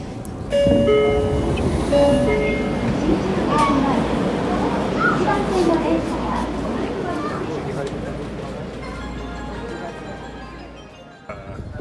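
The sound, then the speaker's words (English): A train rumbles steadily as it pulls into a station, with a few high tonal chimes or brake whines near the start and indistinct voices murmuring in the background. “So this is my stop, and I'm going to make my way towards the DDT dojo.”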